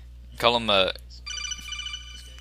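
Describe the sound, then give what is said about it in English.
A phone's text message ringtone plays: a bright, warbling electronic tone, a brief pause, then a quieter run of rapid chiming beeps. “No, that's my That's my ringtone for my text messages.”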